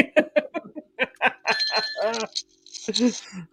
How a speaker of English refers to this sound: Oh, whose bell are you ringing?